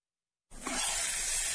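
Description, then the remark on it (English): A steady, loud hiss starts abruptly after a short silence and continues unbroken, bright and breathy, with no voices: an RV's freshwater tank overflowing into its black tank, which is backing up into the vent pipe. “That's the Sullivan's RV freshwater tank overflowing into their black one, which is backing into their vent pipe”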